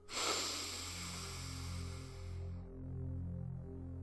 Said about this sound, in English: And you are breathing in through the nose and out through the mouth. Now, I want your mouth slightly open, and I want you to exaggerate your breathing in and your breathing out. So let's breathe together. Breathe in.